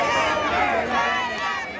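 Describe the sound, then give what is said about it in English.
A large crowd of hundreds of people, waiting for a parade, fills the space with dense, steady murmuring and overlapping voices, rising into excited cheering and shouts, loud all around without a break. “The crowd is big, ready to go.”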